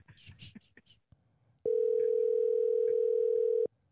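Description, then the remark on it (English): A person talks briefly, then the ringing tone of an outgoing phone call to the speaker's wife sounds: one loud, steady electronic tone lasting about two seconds before cutting off. “Listeners out there, let's see if my wife answers the phone.”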